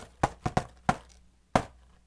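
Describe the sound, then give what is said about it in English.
Five sharp knocks on a door rap out a distinctive uneven rhythm, the way Urkel knocked on Full House: a quick cluster of four, a pause, then one final knock, with no voices. “And this is how he knocked on the door.”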